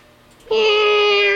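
A single sustained meow of a virtual baby cat in a voice game begins abruptly after a short quiet lead-in, loud, with a bright, steady tone holding to the end.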